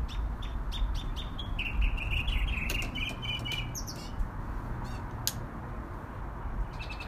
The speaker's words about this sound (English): This little bird in my backyard had something to say